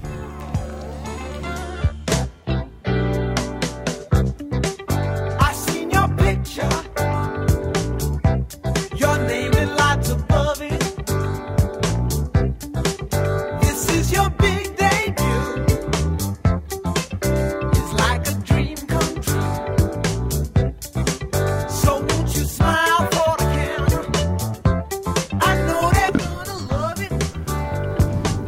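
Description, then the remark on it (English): A 1970s yacht rock song plays steadily for the whole stretch, a full band with a crisp, regular drum beat, warm bass and layered keys and vocals, loud and continuous. “Here's why I think there's something slightly different than yacht rock.”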